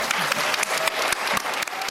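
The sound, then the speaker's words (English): Steady, dense applause from a large audience at an Intelligence Squared debate after the vote results, many hands clapping together in a continuous loud wash with sharper individual claps popping through. “So a big vote to our winners, but also, sorry, I'd also like a very big round of applause for our...”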